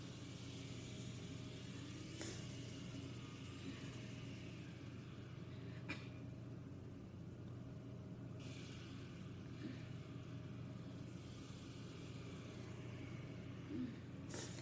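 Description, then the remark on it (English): A steady, droning engine rumble of stock cars in a video game test race, continuous and fairly loud, with a few brief sharp transient clicks scattered throughout and no one speaking. “So we're doing a test race with these models.”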